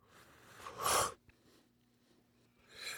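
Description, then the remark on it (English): A forceful airy inhale draws a second hit of concentrate through a Crafty vaporizer in one loud breath, followed by a small click, a quiet pause, and the start of another breathy exhale at the end. “Let me have another taste of this because it also is feeling pretty good. Let's go for a second hit.”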